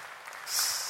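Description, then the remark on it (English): An audience claps their hands, a dense, steady wash of applause that swells about halfway through and holds at a moderate level, with no voices heard. “Don't clap. These hand claps don't mean anything.”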